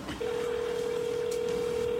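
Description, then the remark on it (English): A steady, unbroken telephone tone starts almost at once and holds for the rest of the moment as a cell phone calls someone's mom, like a line ringing through a handset, with faint room noise beneath and no talking. “Do you mind calling your mom right now?”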